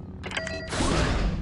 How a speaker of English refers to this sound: The blast door opens, revealing a small chamber.